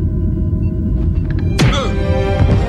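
A single sharp punch impact, Riker punching Picard, lands partway through: a heavy thump with a brief swishing tail, followed by a softer knock, all over a steady low rumbling background with no talking.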